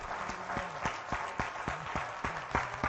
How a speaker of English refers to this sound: Give the Lord a hand clap of praise one more time as you are seated.